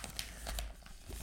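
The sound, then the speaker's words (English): Rustling and crinkling of wrapping paper as a Christmas present is being wrapped, with a few sharper crackly bursts scattered through a continuous papery texture, no talking. “90% rustling.”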